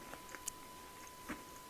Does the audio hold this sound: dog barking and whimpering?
no